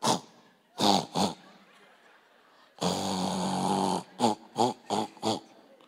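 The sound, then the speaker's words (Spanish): A voice imitates snoring in a Morse code pattern: a few short snorts, one long drawn-out snore, then four quick snorts in a row, fairly loud. “Hay gente que ronca en clave Morse.”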